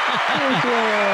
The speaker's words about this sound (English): We're so excited for you. Huge round of applause.